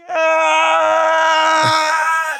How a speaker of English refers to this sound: The last thing we do is we go back over to the Black Pyramid, where Mum-Ra returns with another blood-curdling, painful scream. Like, I imagine he's just been screaming the whole time he's been flying back to the pyramid. Just one scream.